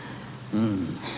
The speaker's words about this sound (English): Breathe deeply